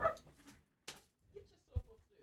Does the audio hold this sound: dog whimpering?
yes